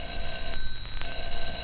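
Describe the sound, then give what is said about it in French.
A telephone rings with a steady, high electronic tone layered in several bright pitches, broken by a couple of short rattling bursts, with no talking over it. “Alakazing, I'm a telephone.”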